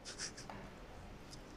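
Faint scratching of pens and pencils on paper in a church as people try to connect nine dots with four straight lines, a quick cluster of short strokes followed by a pause and one more stroke, with no talking.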